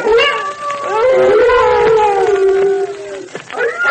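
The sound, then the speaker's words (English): Several timber wolves, gathering and circling, howl together in long, overlapping, wavering tones that rise and fall, loud and sustained with no break, a chorus of howls. “Those wolves have smelled us and they're gathering.”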